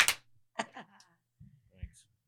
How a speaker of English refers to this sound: Oh, the clap. 1, 2, 3.